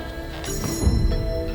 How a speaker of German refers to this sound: Gabi hatte schon 3-mal geklingelt. Vergeblich. Nichts.